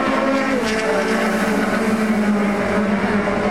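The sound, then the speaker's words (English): Classic saloon racing cars, an Escort, a Cortina and an Alfa Romeo, roar steadily at high revs, a loud, continuous droning blur of motors passing at speed without a break, with no voices heard. “It's a top category, and those last three that you heard were all little escorts, and they're going like the clappers.”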